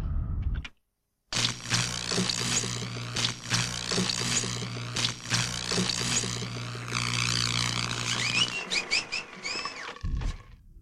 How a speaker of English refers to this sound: Well, this sound you've been hearing, these beeping, is people escaping the detention block